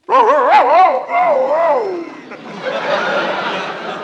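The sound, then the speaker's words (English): A voice imitates a male dog answering a female dog's call, giving a few wavering, yelping barks that slide into a drawn-out howl, loud, followed by a softer, noisy wash of background sound. “The boy dog answered like this.”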